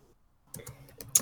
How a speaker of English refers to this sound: Okay, I'm typing. One second.